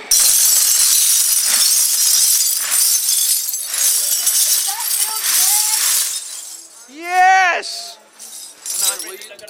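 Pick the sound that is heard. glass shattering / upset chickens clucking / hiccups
glass shattering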